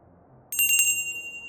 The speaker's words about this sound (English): I have a device with a bell that you pull, and then...